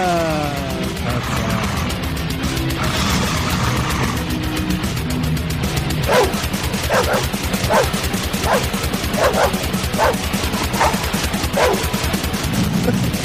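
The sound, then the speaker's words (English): Two pit bull terriers bark in a steady, rhythmic string of sharp yelps over dense death metal music with pounding low drums and distorted guitars, the barks standing in for the vocals. “It's death metal with dogs barking as the vocals.”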